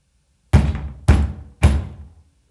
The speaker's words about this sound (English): And one day, there's a loud knock on the door of the House of Love.